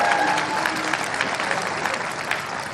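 Steady audience applause, a dense, even patter of many hands clapping at a constant moderate loudness, with faint tonal traces and a hint of voices early on.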